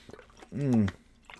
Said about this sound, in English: Oh, that's cool and refreshing. Makes for good radio too. When I stop to just take a drink of water, it's not like I'm live or anything.